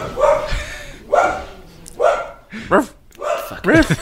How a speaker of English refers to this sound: Fucking dog, shut up!